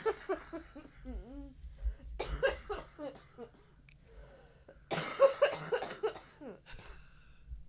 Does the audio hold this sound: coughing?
yes